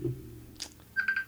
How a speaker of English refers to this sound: Sudden phone call. It's fine, I've silenced it.